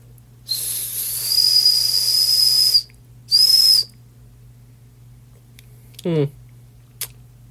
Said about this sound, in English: FlexJet survival tool. Yeah. It's got a flint, a whistle. Hey, I can finally test the whistle.